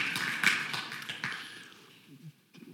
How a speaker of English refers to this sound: Thanks for clapping